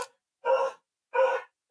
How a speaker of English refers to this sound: I was hoping the dogs would quiet down. I know. I'm sorry. I can't do anything about it. Okay. Unfortunately, they live here too.